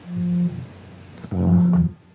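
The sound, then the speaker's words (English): A phone rings twice, each ring a steady, low-pitched electronic tone lasting about half a second, separated by a short pause. No voices are heard. “there's a phone ringing somewhere.”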